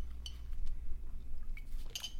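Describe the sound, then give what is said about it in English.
Glasses clink together in a toast, a bright ringing tap near the start and another, longer ringing clink near the end, over a low rumble with no voices. “Malice in the Chalice. Cheers.”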